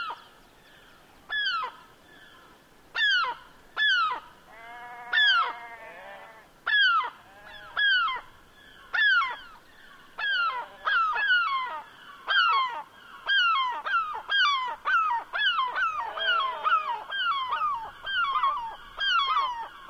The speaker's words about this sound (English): We leave you this week on the west coast of Scotland, high on moorland overlooking the harbor at Arisaig, a place where seabirds and sheep seem to be in deep conversation.